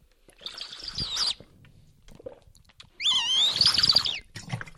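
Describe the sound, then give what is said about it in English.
Someone drinks from a large 5-litre water bottle that has an odd hole in it, making two squeaky, warbling whistles about two seconds apart, each lasting around a second, with quiet gulps in between. “Can you hear that? It's got a weird hole in it when you drink.”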